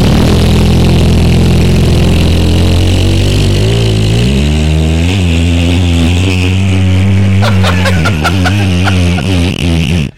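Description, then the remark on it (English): A voice imitates a giant's long fart, Andre's in the wrestling ring: one loud, unbroken, low buzzing drone lasting about ten seconds, its pitch wobbling and bubbling more toward the end, with a few sputtering bursts before it stops. “You know how long a giant can fart? About 37 seconds is what I can.”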